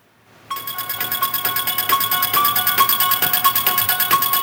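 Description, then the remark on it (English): A thin, tinny instrumental movie theme plays through a small phone speaker, a fast repeating pattern of bright, piano-like notes pulsing steadily at moderate loudness, with no voices. “I'm going to play this through my phone because I don't have a hookup for the podcast mixer.”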